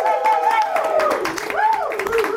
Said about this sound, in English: Let's clap it up for Helsinki, the host city of this.